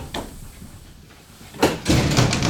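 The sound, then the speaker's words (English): A dog thumps and bangs against a pub door to get in: one knock, a pause, then a loud burst of heavy rattling blows, with no voices. “Yeah, so the dog's got to get into the pub. Right. I gotta come in. Beating the door down.”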